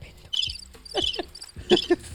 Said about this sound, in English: Give him triple cricket.